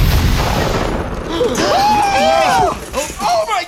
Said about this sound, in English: Just like the recall said it would, Barbsy's pink dream jalopy exploded. Friend warned these toys weren't toying around.